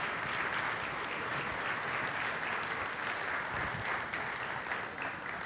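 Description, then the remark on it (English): Steady audience applause fills the whole stretch, a dense wash of many hands clapping at an even, sustained loudness with no voices standing out. “He's begging for applause, man.”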